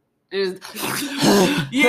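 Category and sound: vocal imitation, imitated heavy breathing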